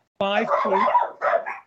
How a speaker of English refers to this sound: Sound like a dog. It's a dog. Excellent. Dog. I got that one. That's 1 point. The golden retriever.